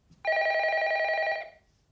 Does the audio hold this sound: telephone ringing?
yes